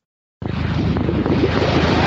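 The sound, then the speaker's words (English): An audience at an Xbox presentation suddenly breaks into loud cheering after a moment of silence, as more Xbox games are announced for backward compatibility. A dense, steady roar of many voices carries on for about two seconds without any clear speech. “Why are you cheering?”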